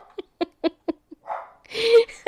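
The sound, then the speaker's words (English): A dog gives a quick series of short, sharp barks, then lets out a drawn-out, high whimpering whine before one final bark. Fairly loud, with no one speaking. “Or your dog can announce this.”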